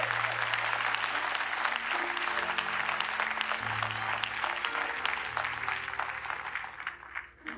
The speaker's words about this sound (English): Come on, let's all stand. Yeah, come on, let's give God a hand clap offering for his word.